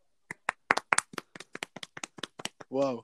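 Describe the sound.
A quick run of about a dozen sharp, loud hand claps in a slightly uneven rhythm, followed at the end by a brief voiced exclamation.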